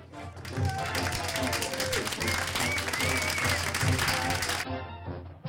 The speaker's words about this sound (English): Oh, there you go. There's a little bit of a crowd reception there.